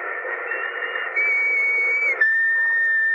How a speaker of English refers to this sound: Remember that whistle? Yes. What about it? I think it might prove no end valuable in this particular emergency.